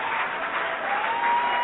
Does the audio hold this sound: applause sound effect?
yes